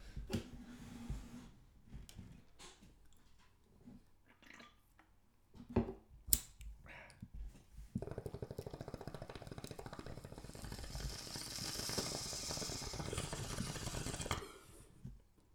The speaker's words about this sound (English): Cheers. Bong rip.